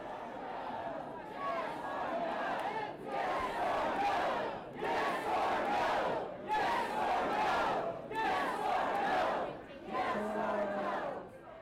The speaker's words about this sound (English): So that was the crowd chanting yes or no when Denham was asked whether or not he believed in climate change.